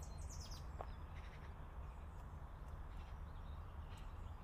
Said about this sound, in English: So I can see blue tits and great tits, and there's a blackbird, I think, singing up there somewhere.